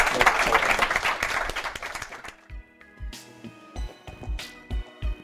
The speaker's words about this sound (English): Thank you all very much. If we could give a warm round of applause to the panel from